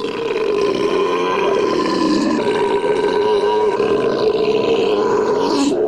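loud belching

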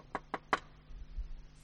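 knocking on a door

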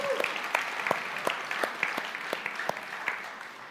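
audience clapping hands

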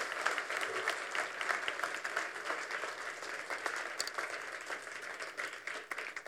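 audience applause

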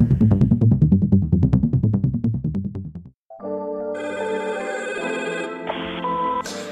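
telephone ringing

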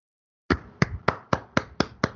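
hands clapping

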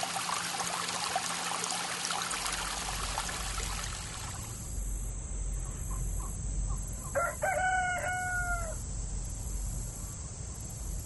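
rooster crowing

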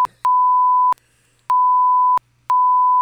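long censor bleep tone

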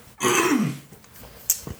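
throat clearing

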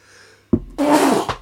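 loud sneeze

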